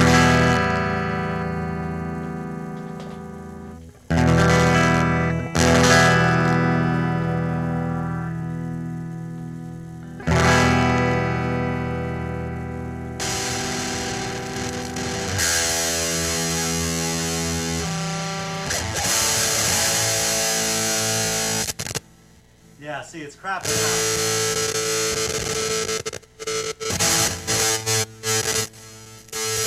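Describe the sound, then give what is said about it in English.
A heavily distorted electric guitar plays loud, sustained chords and riffs through the amp's distortion channel, with crunchy saturated tone, brief pauses between phrases, and choppy stabs near the end. No voices. “Let's switch to the distortion in the amp.”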